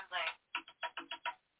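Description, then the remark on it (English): A mobile phone ringtone plays, a longer opening tone followed by five short, evenly spaced electronic notes, sounding slightly thin and tinny, with no talking over it. “Sorry. Should have turned my phone off.”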